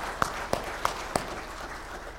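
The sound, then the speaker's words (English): Four sharp, evenly spaced claps ring out over a steady wash of audience applause that carries on after them, with no one speaking. “Yeah, we can applaud that.”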